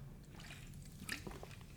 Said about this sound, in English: Right, okay, let me have a sip of drink.